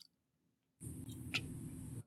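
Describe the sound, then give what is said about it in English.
After a brief silence, wet chewing and munching of pancakes with syrup starts and continues steadily, loud, with a small click partway through. “I am celebrating with some pancakes right now. Very delicious.”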